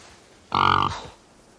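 A pig lets out one loud grunt lasting under half a second, with a short trailing rumble as it fades; quiet background before and after, and no one speaks. The grunt is from a film scene.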